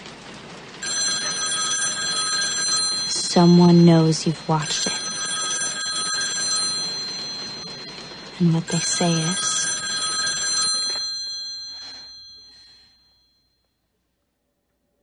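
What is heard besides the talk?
telephone ringing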